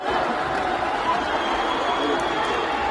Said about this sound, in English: Well, I should say, I do hear booing. I don't hear only booing. Yeah, and they said, there's booing and cheering.